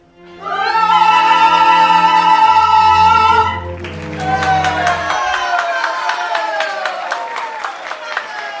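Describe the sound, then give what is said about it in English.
A loud sustained musical chord rings for a few seconds, then gives way to a large theater audience clapping and cheering steadily after a play, a dense wash of applause and raised voices that carries on to the end. “As the applause died down, I scratched a note to Gina on my little pad.”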